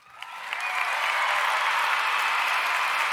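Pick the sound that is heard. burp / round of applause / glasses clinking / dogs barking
round of applause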